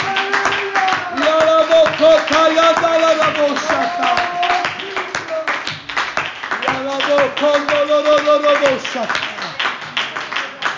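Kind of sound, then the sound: crowd, audience clapping hands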